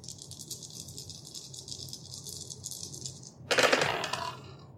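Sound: six dice being rolled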